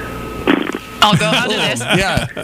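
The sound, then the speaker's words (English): A person imitates a horse's whinny with their voice: a short breathy burst, then a long, wavering, high-pitched neigh that trills up and down for over a second. “That was a good horse. Could we have it one more time, though?”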